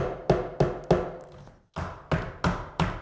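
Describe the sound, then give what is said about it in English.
Seven sharp taps ring out in a gigantic tunnel in an office building in Barnsley, three then a brief pause then four, each followed by a short, smeared echo tail that decays before the next hit. “I think I may have been too slick for a while, and now I'm recording this in a gigantic tunnel in an office building somewhere in an undisclosed location in Barnsley.”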